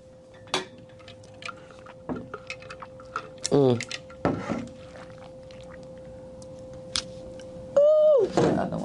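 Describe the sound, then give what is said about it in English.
A few sharp clinks of glasses in a toast, then quiet slurping sips and small mouth noises over a steady low hum, ending with a brief vocal exclamation. “All right, well, cheers. Because I'm going to need this sip.”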